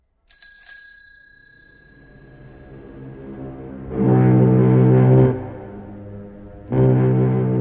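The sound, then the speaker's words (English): A single bright bicycle bell ding rings out and slowly fades, followed by two long, deep, droning blasts that sound like a low horn, with no talking. “If a bicycle bell wanted to be a foghorn, it would have to learn to choose how it began its sound.”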